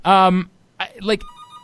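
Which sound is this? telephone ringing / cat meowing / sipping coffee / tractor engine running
telephone ringing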